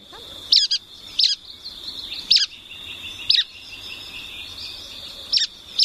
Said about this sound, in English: I think you've got some bird songs ready to go for us.